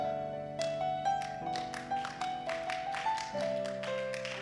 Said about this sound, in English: This clapping is not good for this morning at all.